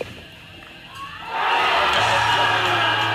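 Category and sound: crowd, crowd cheering and whooping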